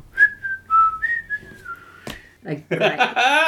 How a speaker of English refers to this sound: I am whistling.